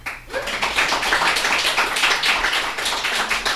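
An audience breaks into applause as a show-of-applause vote on whether only trans people should play trans roles, a dense, crackling wash of many hands clapping that builds quickly and holds steady and fairly loud for several seconds, with no talking over it.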